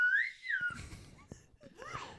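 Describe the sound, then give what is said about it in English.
A slide whistle sweeps up and then down in pitch in a loud glide, followed by breathy rustling and clatter before a shorter wavering slide near the end. “Well, I just love you playing the slide whistle.”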